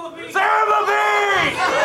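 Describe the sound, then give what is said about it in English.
A group of people yell together at once, a loud, sustained burst of overlapping shouting voices that holds steady for about a second and a half before tapering slightly. “Everybody's yelling.”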